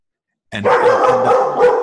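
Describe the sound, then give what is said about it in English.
A dog barks loudly, a quick run of rough, overlapping barks that starts abruptly after a short silence and continues without pause, with no one talking. “There would not be a call without Michael Neal without a dog having to come in or go out.”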